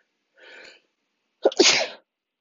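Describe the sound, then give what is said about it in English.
A single loud human sneeze: a short breathy inhale, a brief pause, then a sharp explosive burst that trails off, with nothing else around it. “I'm gonna sneeze. Hold on.”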